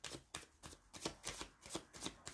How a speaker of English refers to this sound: All right, so I'm just shuffling my cards up because I want her to have a good reading.